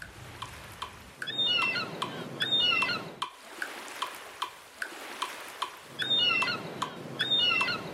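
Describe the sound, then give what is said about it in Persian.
Broad washes of surf breaking on the shore rise and fall in pairs, with sharp seagull cries ringing out over the crashing waves, twice on the second wave of each pair. Between the swells come short, regular ticking clicks. No one speaks. “ما میتونیم اونا رو به موجای دوتایی تقسیم کنیم و روی موج دوم دو بار صدای مرغ دریایی بذاریم.”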